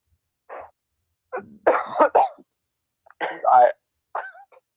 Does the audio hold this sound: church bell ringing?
no